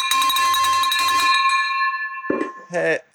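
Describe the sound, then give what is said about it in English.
A big silver bell clangs loudly and rapidly for over a second, its bright ringing tone hanging and fading afterward, before brief voices break in near the end. “Are you guys ready for this silver, big silver bell?”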